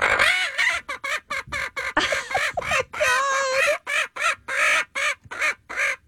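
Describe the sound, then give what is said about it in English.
A chicken clucks loudly in a rapid, chattering run of warbling bursts as a woman tickles it under its wings, the calls separated by brief gaps and sounding almost like excited laughter. “It's, like, laughing when she tickles it under its wings.”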